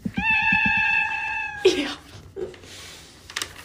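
A single long, drawn-out cat meow holds a steady high pitch for about a second and a half, then breaks off into a few short, muffled knocks and rustles.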